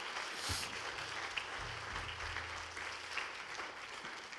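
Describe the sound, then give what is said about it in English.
A church audience claps together for the preachers in a steady, dense wash of applause that carries evenly for several seconds, with a low hum running underneath and no one speaking. “I want to give a round of applause to those guys who preached so beautifully.”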